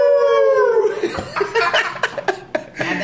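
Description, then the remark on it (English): A person imitates a wolf howl with a single sustained, wavering tone that slides downward, then breaks off into choppy bursts of laughter. “That's why it's Dire Wolf, because it makes it howl.”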